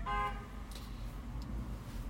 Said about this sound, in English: Hey, they second that with the horn. It was like, yeah, beep beep.